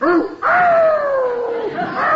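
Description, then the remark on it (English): A loud animal commotion outside: a short yelp, then a long, wavering high-pitched cry that slowly slides downward before rising again at the end, as a dog that was tied up outside goes after a cat that had been asleep in a car. “I tied the dog up outside. I didn't want him running around chasing your cat”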